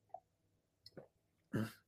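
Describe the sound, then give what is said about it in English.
Someone takes a quick sip of water: a faint mouth click, a soft wet slurp, then a louder, breathy gulp or exhale at the end. No one speaks. “I had to take a sip of my water.”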